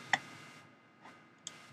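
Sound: ticking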